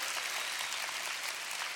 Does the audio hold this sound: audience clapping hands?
yes